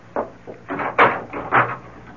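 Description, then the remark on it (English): A door is opened and then shut as someone leaves, a short run of wooden knocks, rattles and a firmer thud, with no voices. “No, don't bother to come to the door. I'll let myself out.”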